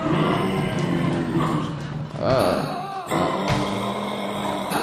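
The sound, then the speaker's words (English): An angry kangaroo roar sound effect, the 'angry Oxford kangaroo': a loud, rasping growl that runs unbroken for about five seconds, its pitch sliding and wavering through a couple of harsher surges. “That means wrap it up then, or else you're going to bring out the angry Oxford kangaroo.”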